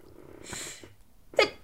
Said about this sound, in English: I don't think I've ever heard anybody sneeze on a podcast, so maybe I should take that out.